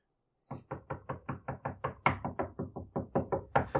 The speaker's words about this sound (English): You gotta hear 20 knocks before you get it.